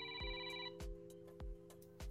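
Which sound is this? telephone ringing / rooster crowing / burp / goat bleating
telephone ringing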